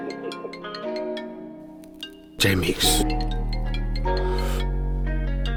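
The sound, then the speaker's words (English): A phone rings with a melodic, music-like ringtone of steady tones, cut by a sudden loud noisy burst midway before the tune continues, with a voice heard briefly. “See my phone ringing?”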